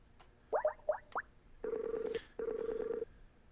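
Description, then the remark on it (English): A few quick electronic blips, then an outgoing phone line rings twice, each ringback tone a steady buzzy burst just under a second long with a short gap between them. No one speaks. “Because we heard it ringing. That came through.”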